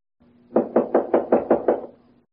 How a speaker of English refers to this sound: there was a knock at the main office door. Do you think we should answer the door?